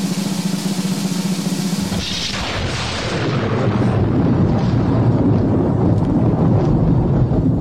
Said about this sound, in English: Just playing. Storm. Yeah, it's kind of fun. Kind of a scary sound for a scary segment, right, with all those tools.